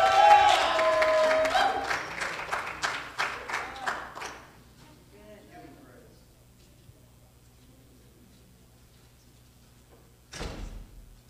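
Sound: audience clapping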